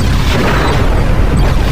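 A massive sci-fi explosion of a jettisoned matter-antimatter warp core roars loud, a dense, rumbling blast with heavy low-end that stays at full force throughout, with no voices; it takes out a number of targets in the city of Khartoum in the Sudan.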